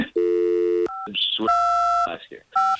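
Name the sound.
telephone keypad dialing tones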